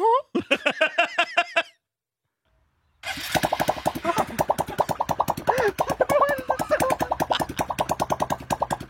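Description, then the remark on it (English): A balloon with its top cut off, stretched over a car tailpipe, flaps in a loud, rapid, buzzing rattle driven by the running engine, wobbling in pitch for several seconds after a short burst of laughter and a pause. “stretched it over the top of the tailpipe of an automobile”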